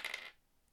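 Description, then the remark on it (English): A quick, bright clatter of dice tumbling across a hard surface, a short rattle lasting a fraction of a second before settling into quiet. “Anyway, dice time. Dice.”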